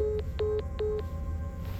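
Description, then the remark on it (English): Three short, evenly spaced electronic phone beeps sound as the caller of a blocked call hangs up, over a low background hum, followed by quiet line noise. No one speaks. “They just hung up.”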